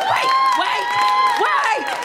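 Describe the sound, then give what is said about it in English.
A live crowd cheers and whoops over steady clapping, a dense wash of overlapping voices rising and falling at a fairly loud, even level for about two seconds. “Wait! Don't clap me!”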